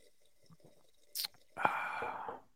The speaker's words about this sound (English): Cheers coffee. To that. So I'm going to take a sip. Easy. Give them 15 seconds of easy. Oh, we're both sipping.